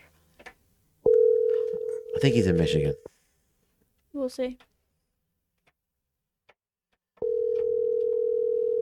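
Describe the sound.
A telephone ringback tone sounds twice, each a steady two-second hum separated by a long pause, as a call is placed to a fan for a Phone a Fan segment. A man speaks briefly over the end of the first ring and again during the gap.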